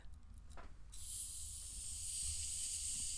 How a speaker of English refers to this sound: Can you open up this Canada Dry? It's gonna spray all over your mouth.